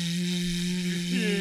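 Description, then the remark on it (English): A steady electric hand dryer blows loudly as washed hands are dried under it, its motor humming under a broad rush of air, with a slight shift in pitch near the end. “And then put it under the dryer.”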